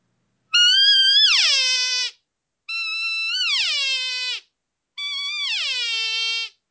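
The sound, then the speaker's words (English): Three drawn-out, nasal cow elk estrus whines blown on an external elk call, each holding a high, needy pitch before sliding downward, separated by short silences, fairly loud with no talking. “And so I use an estrus whine a lot, which is you can do it on a diaphragm easy, but I really love doing it on this external.”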